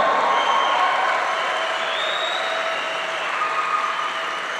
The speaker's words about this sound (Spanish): Dale fuerte aplauso a Jesús.